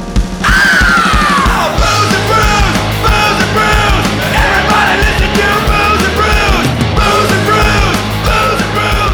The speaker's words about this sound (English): Oh, I like, we're just like, go! It's like super low energy. I tried to bring it up by yelling, and it just felt real aggressive. And it kind of fell flat